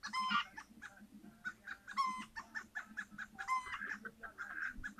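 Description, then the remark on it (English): A hen clucks steadily, her soft clucks broken by three louder, drawn-out squawking calls spaced about every one and a half seconds, with no talking. “Maybe that's an egg laying sound.”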